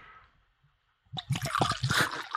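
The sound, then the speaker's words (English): Juice pours into a cup, starting with a faint trickle and then a loud burst of splashing and glugging that fills the last second. No voices. “That's good pouring sound.”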